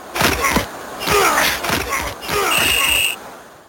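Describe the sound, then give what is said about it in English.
Video game football: a string of heavy, thudding tackle impacts with grunting voices, then a steady high-pitched referee whistle blast lasting about half a second near the end. “Okay, so we got a whistle there. We got a lot of tackling.”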